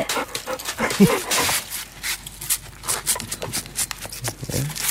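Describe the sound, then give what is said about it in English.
A dog pants rapidly and licks itself, with wet, smacking licking sounds in a steady, uneven rhythm that carries on throughout. “It's licking itself. It'll be occupied for a little while.”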